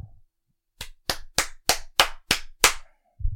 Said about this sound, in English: Great. Booty clap. He just booty clapped it.